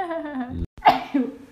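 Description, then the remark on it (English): A single sneeze: a drawn-out voiced intake that rises in pitch, a brief silent catch, then a sharp, breathy burst that trails off quickly. “Bless you. Sorry.”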